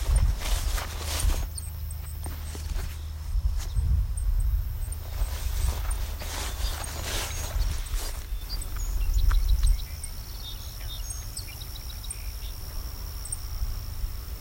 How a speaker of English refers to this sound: I hear a lot of ticking, and that's Savannah sparrow. Very, very short tick. No, that's actually a song sparrow. This is a different call than I thought.